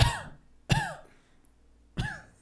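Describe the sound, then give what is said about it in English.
Three abrupt, loud sneezes: two in quick succession, then a third after a short pause. Each is a harsh burst that fades quickly, with no talking around them. “Bless you.”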